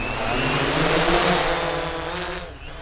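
A hexacopter drone's rotors whir loudly and steadily as it is let go from overhead by hand and takes off, a dense mechanical buzz with a rising tonal hum that holds, then eases slightly at the end.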